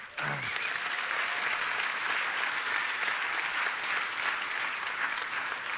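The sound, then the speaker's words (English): Steady audience applause fills the room as a pastor is publicly thanked for remodeling the property, a dense wash of many hands clapping at an even, sustained level for several seconds without letting up. “hold your applause. He ain't done yet.”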